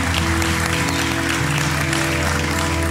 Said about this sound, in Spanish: Denle aplauso al Señor.